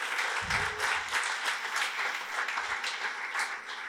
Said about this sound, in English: So a quick round of applause for those two guys.